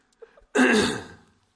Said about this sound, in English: excuse me, just have this dry cough.